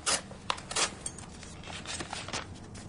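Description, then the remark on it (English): A paper knife slits open an envelope holding a letter in a few quick rasping strokes, the dry tearing of paper rising and fading over about three seconds, with no voices. “If you would be so kind as to pass me over that paper knife.”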